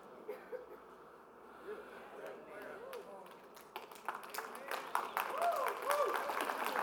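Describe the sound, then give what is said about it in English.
An audience breaks into clapping that starts scattered and swells into steady, louder applause over several seconds, with murmuring voices from the crowd mixed underneath. “Y'all almost made me clap for myself again.”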